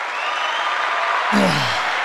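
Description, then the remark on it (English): A canned applause sound effect: dense, steady clapping that fills the whole clip, with a low sliding tone dropping in pitch near the end. “Where's the applause sound drop?”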